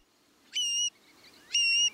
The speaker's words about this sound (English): In spring, the male long-billed curlew sings his bubbling song, stitching a zigzag across the sky. Seeing it rise on rapidly beating wings, then glide down, we're witnessing its mating display.